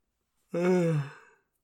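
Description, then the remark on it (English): A single drawn-out yawn, voiced and breathy, sliding downward in pitch for about a second before trailing off into a soft exhale. “The yawns are so real.”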